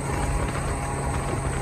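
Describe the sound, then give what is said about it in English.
A moped's small engine runs steadily on highway 275, a continuous low hum with a droning tone, blended with constant road or wind rush and no breaks in the sound. “So we're now on 275 on a moped.”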